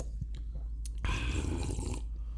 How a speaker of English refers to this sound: Take a little drink there. Okay, here we go. Take my little drink.